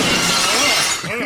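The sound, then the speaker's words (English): Glass shatters loudly, a dense bright burst of breaking shards that rings out and tinkles briefly before trailing off. “If the glass breaks him out of his loops.”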